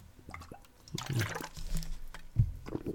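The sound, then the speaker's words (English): Water is poured, with splashing, gurgling bursts over a few seconds and a final glug near the end, no voices present. “More water.”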